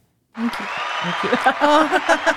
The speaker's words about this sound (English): You pulled out the applause. Thank you. We haven't used the sound effect in a while. That was good.